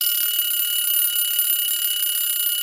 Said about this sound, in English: The timer has dinged, so it's time to sign off.